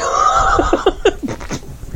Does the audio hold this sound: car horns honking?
no